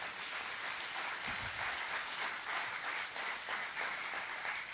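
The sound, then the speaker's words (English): An audience at a church service applauds steadily, a dense, even wash of many hands clapping that holds a constant level throughout, with no voices rising above it, giving Jesus a hand. “Give Jesus a hand.”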